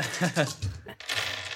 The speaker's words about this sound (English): I'm rolling the dice now.